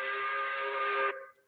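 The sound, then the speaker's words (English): A steady, reedy whistle blast sounds alone, holding one chord-like pitch for about a second before cutting off and trailing away into a brief fading echo. It is a five o'clock quitting-time whistle on a Friday. “5 o'clock whistle on a Friday, brought to you by Super D, Super Discount Store in Chalmette.”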